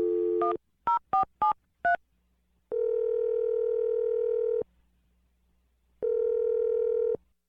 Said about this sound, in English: we're going to dial the phone number for you right now and let you make your Awkward Tuesday phone call